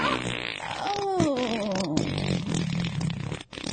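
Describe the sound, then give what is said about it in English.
A drawn-out, wavering fart with a buzzy, sliding pitch that sputters downward, loud, trailing into rough rumbling noise with no talking. “Either that, or when she's coming, you fart, and it'll take everything away from the intimacy.”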